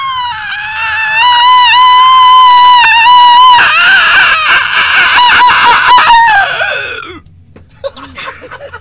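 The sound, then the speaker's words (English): A person imitates a hawk's cry with one long, loud, shrill screech that wavers and grows raspy for several seconds before breaking off into brief, fainter sounds. “Do the hawk noise?”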